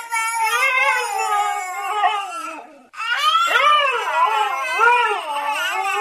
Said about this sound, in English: The top 3 coming up after the husky and the baby go at it imitating each other again.